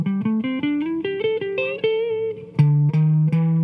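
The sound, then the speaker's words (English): A distorted electric guitar plays a quick pentatonic lead line in lead pattern two with added chromatic passing tones, climbing stepwise through closely spaced notes, some slid or bent, then drops to a low sustained note. Loud, with no voices. “And you can do the same thing in the other lead pattern.”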